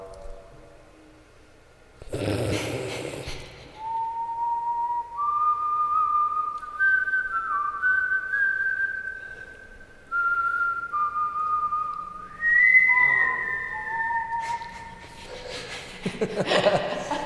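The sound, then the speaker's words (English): A person whistles a melodic tune of sustained, sliding notes in reply during a whistling contest, with a brief breathy burst or laugh near the start and another at the end. “whistle back, I guess?”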